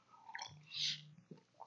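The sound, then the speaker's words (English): A person quietly sips water: a brief wet slurp, then a soft gulping swallow and a faint click of the throat, with no talking. “And we, excuse me, also drink the water, don't inhale it.”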